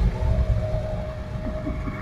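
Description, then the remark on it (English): Three car engines rumble as the cars move slowly along a road at night, in a deep, continuous low drone, with a steady mid-pitched whine running through it and a few slight rises in revs. No one speaks. “Listen to those engines.”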